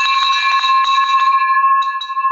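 A loud, bright celebratory bell rings continuously for a couple of seconds, its metallic tone shimmering with rapid strikes before settling into a sustained ring. No voices are heard.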